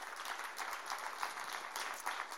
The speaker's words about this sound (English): Give Jesus one more good clap offering. Amen.